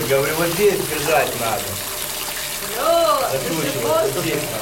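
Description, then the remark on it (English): Hot water gushes in a steady, loud rush from a water pipe that burst after a power cut, spraying nonstop and flooding a building's basement, with muffled voices rising and falling underneath. “There was a power cut, and one of the water pipes burst.”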